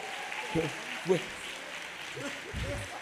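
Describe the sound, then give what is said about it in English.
An audience claps steadily for a person from Jamaica in a dense, continuous wash of hand claps lasting a few seconds, with brief spoken voices breaking through over the applause. “Clap your hands for Jamaica.”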